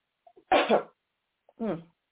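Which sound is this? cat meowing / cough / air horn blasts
cough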